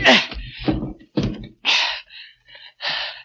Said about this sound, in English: So I piled furniture against the door.